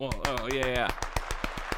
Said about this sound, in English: Applause. Yeah. Clap.